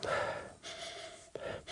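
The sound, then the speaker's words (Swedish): Breathy sniffing as someone swirls wine, a Cabernet and Merlot blend, in a glass and draws in its aroma through the nose, a longer inhale followed by a short sharp sniff, with no talking. “Du, jag måste sniffa och snurra lite grann.”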